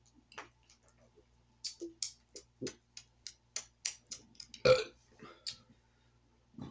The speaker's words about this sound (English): These diet sodas make me burp. Like, I don't ever burp unless I have carbonation.